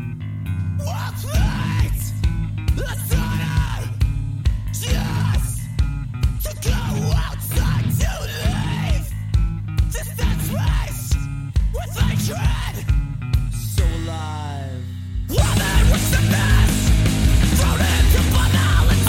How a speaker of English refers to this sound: which is quite possibly their most like toughest or hardcore song on the album, dude. It's fucking brutal, especially if you love bass.